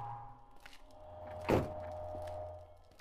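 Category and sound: vehicle, car door closing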